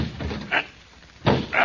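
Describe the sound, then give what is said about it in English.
A few heavy knocks strike the door of Blackie's apartment at uneven intervals, loud, with a harder double blow near the end and no voices. “Did it ever occur to you that Blackie might be home and not open the door if he knew it was me outside?”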